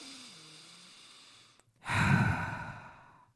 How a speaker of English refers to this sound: And I want you just to take a minute and try to take a deep breath in into your belly.